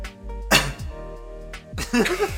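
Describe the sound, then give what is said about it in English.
A sudden, loud cough bursts out against a low steady hum, followed a second later by another harsh cough and a short voiced sound trailing after it. “Don't cough, gentle. Don't do it. Cough.”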